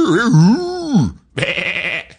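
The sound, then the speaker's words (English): A person imitates a sheep with two wavering, nasal bleats, the first long and sliding downward, the second shorter and brighter after a brief pause, loud. “You do a good sheep.”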